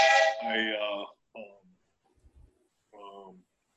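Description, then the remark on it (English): A phone's text message alert in an office that sounds like a train whistle: a long, loud, chord-like tone, then a short blast, and after a pause another brief whistle. “It sounds like you've got a train whistle in your office. It was a text message.”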